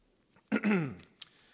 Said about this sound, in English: if I could find a cure for that, I think I'd pay a lot of money for it. All this coughing and stuff.